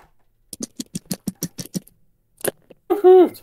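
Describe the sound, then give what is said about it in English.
Three dice clatter across a hard surface in a quick run of sharp clicks, rolled for damage in a game, a final stray tap following after a pause, then a short vocal exclamation at the end. “That is better than an 8, so roll your damages. 3 dice.”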